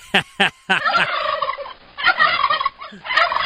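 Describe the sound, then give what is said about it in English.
A turkey gobbles loudly, starting with a few sharp clucks and breaking into rapid, warbling gobble bursts that repeat across the few seconds, with no voices. “That's the sound effect that Roy Leonard used when he did his Turkeys of the Year.”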